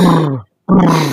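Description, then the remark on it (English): A voice imitates a motorboat with two loud, buzzy, rumbling bursts, each a low, steady drone split by a brief pause of silence. No words are spoken. “Well, that just sounds like you're a motorboat”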